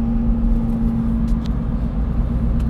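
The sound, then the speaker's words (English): A steady low rumble of a car pulling out from beside another car and moving along a road, continuous, with a constant engine hum and no voices. “Whoa, I just saw a car pull out from another car.”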